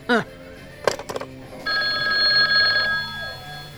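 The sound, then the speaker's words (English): A telephone bell rings in one sustained, bright burst of about a second, following a few brief voice sounds and clattering noises. “I haven't had this many phone calls since I came home from the hospital.”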